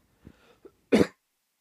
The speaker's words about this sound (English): I'm going to have to cough.